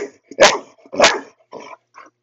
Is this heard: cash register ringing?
no